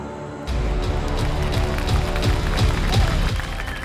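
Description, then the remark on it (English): A crowd breaks into loud, sustained applause for the host of the Rugby Odds show, starting abruptly and holding steady, with faint rhythmic thumps pulsing through the dense clapping. No one speaks. “And it's been 2 weeks since you've been able to applaud yours truly”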